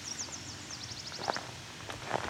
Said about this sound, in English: So that song, so the swamp sparrow is just the ringing you just heard, kind of in the distance, but the other warble, which I'm not sure right off the bat.